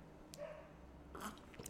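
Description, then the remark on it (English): A few quiet sips of water, short wet slurping sounds spaced apart, with no talking. “Just sipping my water.”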